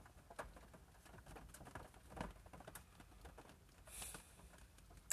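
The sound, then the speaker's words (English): A rain sound effect: soft, steady rain pattering throughout, quiet, with scattered individual drops ticking and a sharper tap right at the end. No one speaks. “But, this rain effect is kind of how I feel right now, you know?”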